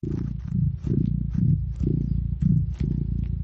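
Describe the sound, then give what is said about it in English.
Duarte the cat purrs, a steady low rumble that swells and eases in a regular breathing rhythm, fairly loud and continuous with no voices. “What a nice purr you've got there, Duarte.”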